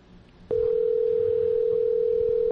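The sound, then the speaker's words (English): A steady, loud phone dial tone on a Skype call begins abruptly half a second in and holds as a single unbroken pitch until the end, after a brief stretch of quiet room noise. “let's see if we can get Karen Fisher, by the way, on the phone”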